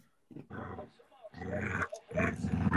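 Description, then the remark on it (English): A dog growls in three rough bursts, each a low rumbling snarl lasting under a second, loud, with brief pauses between them. “that growling makes me so happy inside.”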